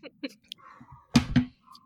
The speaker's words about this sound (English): Oh, let me close the door. I'm getting feedback from my dog. I'll pause there one second.